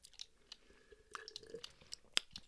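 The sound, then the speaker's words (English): Wet mouth sounds of someone sucking and licking hard candy, with irregular smacks and sharp little clicks, one louder click near the end, and no talking. “You keep there sitting there sucking and licking.”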